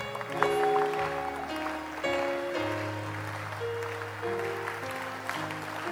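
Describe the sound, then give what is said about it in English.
A standing audience claps steadily and continuously throughout, a dense wash of hand claps with no break, while sustained keyboard or organ chords shift underneath. “Stand to your feet and keep clapping.”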